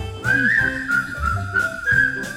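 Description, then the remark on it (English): A person whistles a bright, wavering melody, the pitch sliding between sustained notes, with soft instrumental accompaniment playing underneath. “Put on that grin and start right in to whistle loud and long.”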